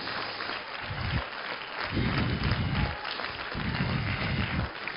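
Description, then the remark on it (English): An audience gives the Lord a hand clap, a dense, sustained patter of many clapping hands that swells and ebbs in waves over several seconds, with no voices standing out. “Oh, give the Lord a hand clap if you understand what I'm talking about.”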